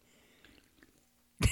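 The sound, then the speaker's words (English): Faint mouth and liquid noises lead into a sudden loud, breathy slurp at the very end, an audible victory sip of Diet Squirt soda with no talking. “A nice audible sip as well. I want to make sure you hear it.”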